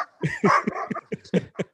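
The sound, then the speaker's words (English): A young chihuahua, a neighbor's dog passing by, yaps in a quick, uneven string of about seven sharp, high-pitched barks, clear with no talking over them. “Yeah, I got some neighbors passing by, and the neighbors' dogs are.”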